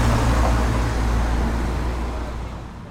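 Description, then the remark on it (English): A heavy truck rumbles by with a deep engine drone and broad road noise, then slowly fades as it moves away. No one speaks. “Here comes another one. Prepare to die. This is not a practice truck.”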